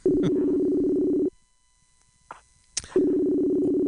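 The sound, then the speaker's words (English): A telephone ringback tone of an outgoing online call that goes unanswered: a steady, buzzy low hum that sounds for over a second, falls silent for about a second and a half apart from a few faint clicks, then starts again, loud. “Reach for that phone. Oh, you're not reaching for the phone.”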